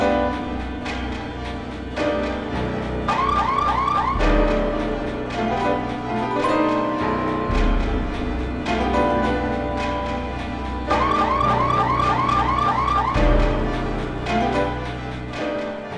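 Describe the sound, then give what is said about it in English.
A car alarm blares, cycling through repeated electronic wails and rapid chirping whoops in a steady, insistent pattern, with no voices present. “Car alarms in the middle of the night, when they first were invented, they were always going off, at 3 o'clock in the morning.”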